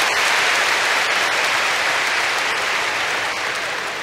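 A large audience applauds in a dense, steady wash of clapping that holds loud for the whole span and eases off only slightly toward the end, with no voices heard.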